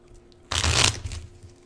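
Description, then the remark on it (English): A quick, crisp riffle of playing cards being shuffled, a dense half-second flutter followed by a softer settling as the deck is bridged back together, fairly loud. “card shuffling bridge video.”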